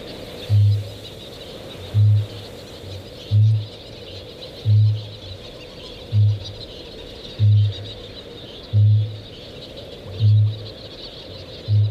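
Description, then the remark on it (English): Deep, resonant booming calls of a male kākāpō repeat steadily about every second and a half, nine low thumping pulses over a soft, hissing background. “Kākāpō, the booming of the male kākāpō is a little bit like the heartbeat of the land.”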